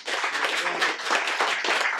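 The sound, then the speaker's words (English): An audience claps together in a dense, steady wash of overlapping hand claps, sustained at an even, fairly loud level for about two seconds without any talking. “They haven't changed enough, but I think you should give yourselves a big clap for everything that you've done.”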